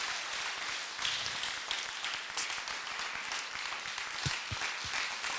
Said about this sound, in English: how many of you can just lift up a shout and a clap of praise to Jesus, the King of Kings and the Lord of Lords? Let's stand to our feet.